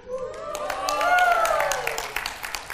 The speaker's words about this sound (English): I appreciate how weak that was. I really appreciate the anemic applause right there. That was awesome.